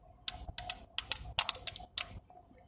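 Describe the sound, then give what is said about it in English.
Two pencils tap out a quick drum pattern, a couple dozen crisp, dry clicks in short bursts and rolls, moderately loud, with no voices. “And those drums were good to be two pencils.”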